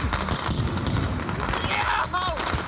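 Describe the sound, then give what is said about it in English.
Roman candles and other fireworks set off in the streets of Brooklyn, a dense, rapid barrage of pops and crackling bangs, with a couple of whistling streaks rising and falling near the end amid a noisy, crowded background. “They commandeered the streets while setting off Roman candles and other dangerous fireworks.”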